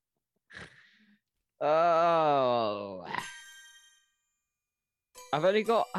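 signal or alarm, mobile phone ringtone ringing

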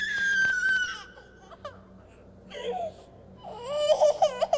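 sound effect, infant crying

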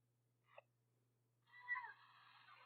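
animal, cat meowing

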